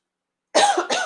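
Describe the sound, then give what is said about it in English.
Two harsh coughs in quick succession follow a moment of silence, the second slightly shorter, from someone with something stuck in their throat. “I got something stuck in my throat.”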